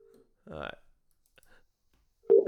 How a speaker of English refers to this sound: Oh, it's ringing.